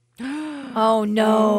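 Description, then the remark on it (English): A loud, drawn-out gasp of shock from a single voice, sustained, rising into a strained voiced exclamation for over a second with no words spoken. “gasp answered the question I was going to ask.”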